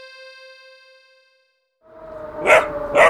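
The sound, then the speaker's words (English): A husky puppy named Frisky, by a sled being unloaded in the wind, lets out a drawn-out, high whine, falls silent briefly, then gives two sharp, loud barks, with no one talking. “The dog was on leash, but huskies need a lot of exercise.”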